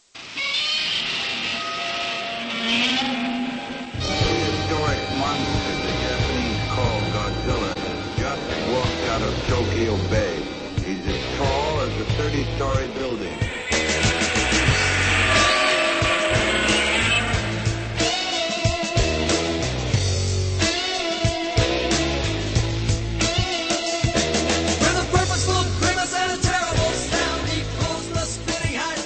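Rock band music plays loudly throughout, opening with a sparse few seconds before a steady driving beat, thumping bass and dense, layered guitars kick in and carry on without pause.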